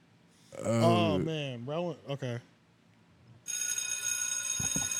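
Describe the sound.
A wordless voice warbles briefly with rising and falling pitch, then a bright, steady bell ringing sound effect starts and keeps going with shimmering high tones until the end.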